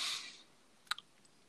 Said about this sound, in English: Oh my god, I keep clicking things because my thing is dumb.